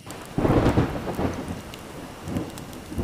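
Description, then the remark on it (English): A thunderstorm with low rumbling thunder swelling up early and again near the end, over a steady wash of rain pattering in the background. No voices. “20 minutes later, started a storm, and I went to look outside.”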